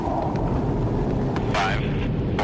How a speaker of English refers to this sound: 5, 4, 3. The F-18s are traveling at almost the speed of sound.